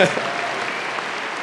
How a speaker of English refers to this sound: I want everyone to clap again for them.